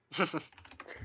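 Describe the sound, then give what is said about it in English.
A quick run of computer keyboard typing, with a cluster of fairly loud keystrokes followed by softer, scattered clicks. No one speaks. “You hear my typing? I'm sorry.”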